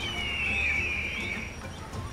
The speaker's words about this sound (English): Okay, this place looks much more civilized. Although it's kind of weird. That huge rock wall over there seems inhabited by real big birds, and they're wearing business suits.